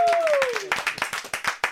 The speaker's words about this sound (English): Round of applause. Woo!